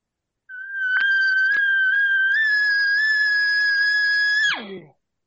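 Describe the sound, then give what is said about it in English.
A single long, high-pitched nasal mew blown on a green amp diaphragm call imitates an elongated elk cow sound, holding steady for about four seconds before sliding sharply down in pitch at the end. “Let me take this diaphragm. I'm going to show y'all. Listen to this. This is a cow sound elongated.”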